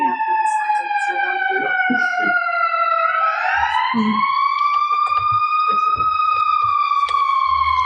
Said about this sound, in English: I'm going to wait for the siren.